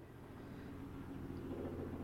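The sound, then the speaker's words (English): A helicopter passes overhead, a steady low droning rumble with a throbbing undertone that swells slightly louder toward the end. Fairly quiet overall, with no voices. “So there's a helicopter above us.”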